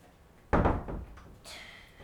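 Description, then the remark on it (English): A door is opened to let someone out: a sudden loud thump that rings out briefly, then a lighter, higher rattle or latch click about a second later, with no talking. “Okay, Oliver, did you want to go out? Just open the door.”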